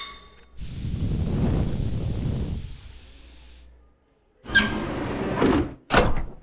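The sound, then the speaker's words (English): An airlock door opens with a long, loud pneumatic hiss over a deep mechanical rumble, then a brief pause, a second hissing burst, and a short final clunk. No one speaks. “get the airlock.”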